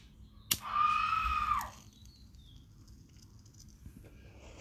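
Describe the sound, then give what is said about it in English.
A sharp click is followed by a single high, wavering scream lasting about a second, somewhat muffled, from the next-door neighbor's house, then only quiet background hum. “I don't know if y'all heard that, but my fucking next door neighbor house just screamed out of smoke.”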